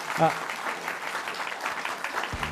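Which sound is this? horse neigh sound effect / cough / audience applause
audience applause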